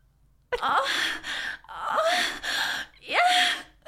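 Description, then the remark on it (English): A woman performs exaggerated, breathy faked orgasm moans as a demonstration: three drawn-out gasping cries in quick succession with rising and falling pitch, fairly loud, with no talking. “Give us a demonstration right here, right now.”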